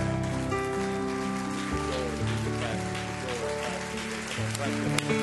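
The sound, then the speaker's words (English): An audience claps hands in a dense, continuous patter that sounds almost like rain, layered over loud sustained musical chords that shift pitch every second or so. “Clap your hands all over the building.”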